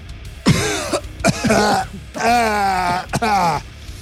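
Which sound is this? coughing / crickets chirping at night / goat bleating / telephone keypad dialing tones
coughing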